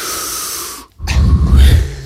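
Loud, deliberate breathing with no talk: a long airy breath, a brief pause, then a heavier, rougher breath that fills the rest of the moment.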